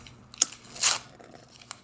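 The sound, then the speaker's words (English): Paper is torn by hand in a few sharp rips, the longest a bright, ragged tear in the middle, with brief crackly snaps before and after, no voices. “I'm going to shred mine, and then I'll burn it later.”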